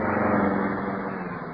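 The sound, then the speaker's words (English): A car drives right past, its steady, fairly loud rumble holding evenly before easing off slightly toward the end as it pulls up to stop. No voices are heard. “His car, the horse car.”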